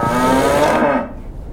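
A single loud cow moo, rich and resonant, holding steady for about a second before trailing off into quiet. No voices accompany it.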